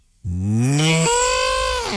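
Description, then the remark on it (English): A person imitates a cow with one loud, drawn-out, gravelly moo that rises and then drops into a rough, growling tone, sounding like an angry cow. It lasts nearly two seconds. “That's an angry cow.”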